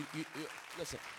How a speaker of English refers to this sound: If you're gonna clap, clap well. If you're gonna clap, clap well.